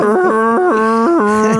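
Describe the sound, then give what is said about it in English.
A voice imitates a blaring Viking horn with a loud, sustained, mooing call that wobbles back and forth between two pitches for under two seconds, sounding rather like a cow. “I tried to do the horn, but I did like a prepubescent like cow.”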